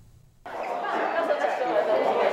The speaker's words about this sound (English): Taiwanese Olympians Guo Xingchun, Huang Xiaowen, and Ding Huatian get a reaction from the crowd. At the Taiwan launch of Apple's iPhone 13 series, each received a free smartphone courtesy of a telecom operator.